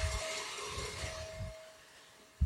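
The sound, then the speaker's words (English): An electric mixer whirs steadily as it whips cream to soft peaks for spreading over a chocolate pie, its beaters knocking rhythmically against the bowl, then the motor cuts out and a single clunk follows. “We want the soft peaks here. And we check that just by turning this off and picking up the beater and see what we get.”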